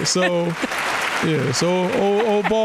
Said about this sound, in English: Round of applause for Steve Spurrier, the head ball coach.